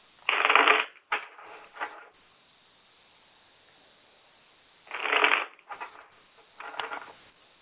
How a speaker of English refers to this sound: So while I'm shuffling the cards, I'm asking the same question, okay?